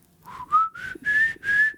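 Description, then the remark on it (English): A person whistles a short melodic tune, with several sustained notes rising and falling in pitch, a few brief pauses between phrases. “Instead, you started whistling.”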